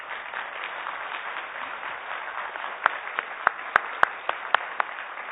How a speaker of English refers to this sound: There may be people in the overflow that are over there, and please just know if we could see you, just know that our applause is for you as well. Thank you. You may be seated.